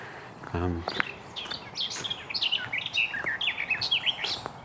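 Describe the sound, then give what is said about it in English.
Garden warbler song in a woodland, a rich, rapid, continuous warble of varied phrases, clear, running throughout, with a brief low murmur near the start. “Yeah, it's a garden warbler.”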